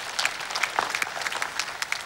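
An audience claps for a woman after her teaching, a dense, steady burst of applause with many overlapping claps at moderate loudness and no voices standing out.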